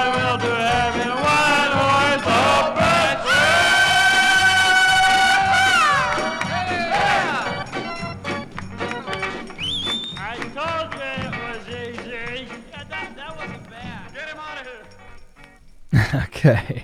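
A raucous garage rock cover of Jingle Bells, loud and dense, with a rough shouted vocal over a driving full band, holding steady before a brief noisy burst at the end.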